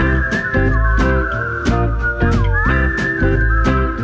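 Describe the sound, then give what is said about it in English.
Someone whistles a tune with sliding, wavering notes over a loud backing track with a steady, regular drum beat. The whistling is prominent throughout. “I gotta play all the songs and whistle.”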